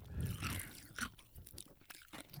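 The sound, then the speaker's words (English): Loud crunching and chewing of ice, with irregular crisp bites and grinding over about two seconds, heard on its own without talking. “Ice intermission. I said it's my ice, it's whatever I want to chew, so I feel like I've earned the permission.”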